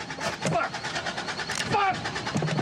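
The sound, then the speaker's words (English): A car engine cranks over and over in a rapid, grinding rhythm without catching, fairly loud, with voices murmuring faintly beneath it. “I think you flooded it.”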